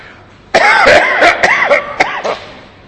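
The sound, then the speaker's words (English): A man coughs repeatedly, a burst of several harsh, rasping coughs in quick succession with throaty, strained breaths between them, no speech. “I have to ask you forgiveness for the fact that I'm coughing.”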